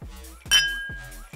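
glasses clinking

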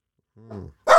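dog barking

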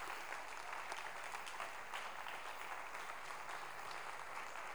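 audience clapping hands

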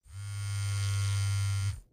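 phone buzzing

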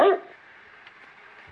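dog barking

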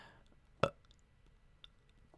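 burp

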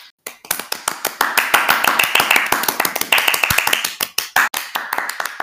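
round of applause

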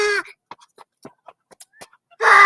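geese calling

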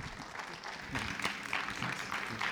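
audience applause

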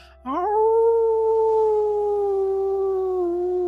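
howling

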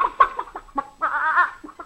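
chickens clucking

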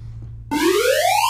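alarm sound effect

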